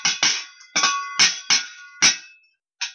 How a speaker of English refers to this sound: That sounds like a can's a clanking.